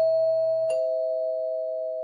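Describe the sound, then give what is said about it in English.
A doorbell chimes with a steady, sustained electronic tone that rings out and slowly fades, with a brief shift partway through. No one speaks. “Anyway, who at the door is gonna be y'all?”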